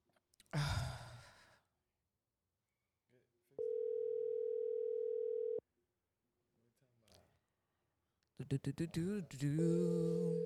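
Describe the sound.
A single steady ringback tone from a phone line buzzes for about two seconds while the call waits to be answered, framed by a breathy sigh before and a voice starting afterward.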